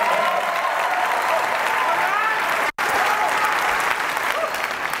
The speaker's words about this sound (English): Let's clap it up.